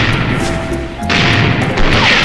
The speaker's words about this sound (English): Cut the running wreckage away! Stand by as your guns fire! Take very good aim. Get ready now.